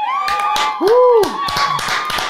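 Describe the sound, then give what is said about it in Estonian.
Scattered applause from a few people, irregular sharp claps rather than a full ovation, with a steady high tone and a brief rising-and-falling vocal hoot in the middle. “Aplaus meile, aplaus.”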